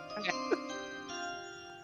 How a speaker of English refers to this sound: How about the chime? Let me get that chime done. Moving on.